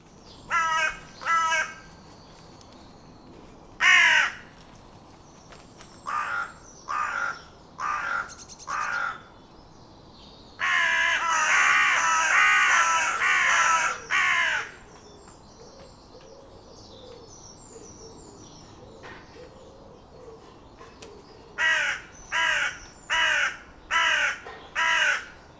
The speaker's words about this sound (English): The carrion crow often repeats the caw calling two or three times very quickly, one after another. Then it takes a quick breath and repeats the croaky caw call again. The harsh, croaky caw sound also can be heard when the carrion crow is in flight.